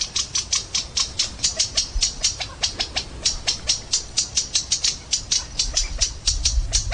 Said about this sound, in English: And then quail, California bird.